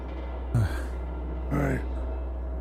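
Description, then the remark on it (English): Two short grating scrapes of metal on stone, the second longer, each a harsh noisy burst with a wavering tone, over a steady low hum. “It's like metal scraping stone.”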